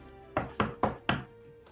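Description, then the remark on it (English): Four firm knocks by a woman on a large oak door in a busy office, evenly spaced in quick succession, solid with a dull, resonant thud, followed by a faint shuffle. “A dwarven woman holding a note approaches a large oak door, puffs out her chest, and knocks.”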